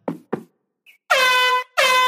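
Two dull knocks, then two loud, sustained air horn blasts, each about half a second long, separated by a brief pause and sounding close and blaring.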